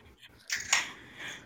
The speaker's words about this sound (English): Uh-oh, I just heard a gun click. Oh, that sounded like a soda can. Or a beer.